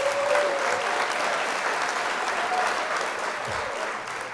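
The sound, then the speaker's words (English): Steady applause from a live crowd welcoming a guest fills the whole stretch, a dense, even wash of clapping at moderate volume that holds without pause and tapers only slightly near the end. “I didn't know there was going to be a live crowd.”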